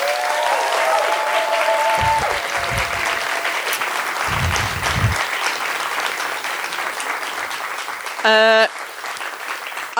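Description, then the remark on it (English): A crowd claps steadily and fairly loudly for the full stretch in a round of applause for the volunteers, a dense, even wash of applause with a few low thumps and a brief shrill whoop near the end. “And let's do a little round of applause for all the volunteers, because everyone here is voluntary.”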